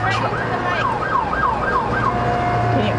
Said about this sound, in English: I'll wait a minute for the siren to go by.